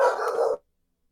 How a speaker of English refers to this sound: Sorry, my dog's going off.